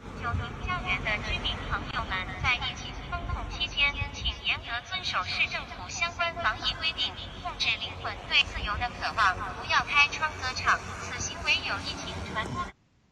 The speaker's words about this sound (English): Please comply with COVID rules. Control your soul's desire for freedom. That is what is being said by this messenger drone above Shanghai.